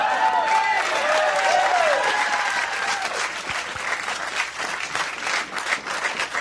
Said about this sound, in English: Why are you clapping? You want me out of here? I guess so.